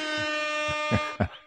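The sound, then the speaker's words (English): A loud, brassy air horn blares in one long sustained blast, then cuts off into a couple of short, choppy bursts at the end. “Air horn. Gotta go air horns.”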